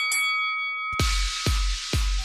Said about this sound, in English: We get things rolling with the opening bell. Want to ring the bell?